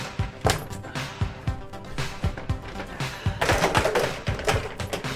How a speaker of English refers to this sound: Hold on, I gotta get a shorter chair.